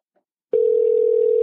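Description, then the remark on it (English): A phone line's ringing tone comes on after a brief silence, a loud, steady electronic hum that holds unbroken to the end, with no voices over it. “I just told him to answer the phone.”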